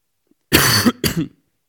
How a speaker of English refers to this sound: Sorry, I got a bit of a cough.